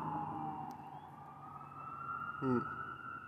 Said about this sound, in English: Got fire trucks going on. I hear some police cars and stuff.